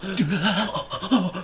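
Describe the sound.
A voice imitates heavy, exaggerated breathing, a few rhythmic panting huffs with a voiced, throaty edge, fairly loud, with no words spoken.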